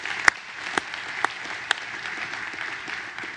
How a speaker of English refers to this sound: I bet they're clapping for him over there. If they're not, we need to all clap for him right now.